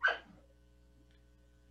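A dog gives one short, sharp bark right at the start, fairly loud, followed by near silence with a faint steady hum in the background.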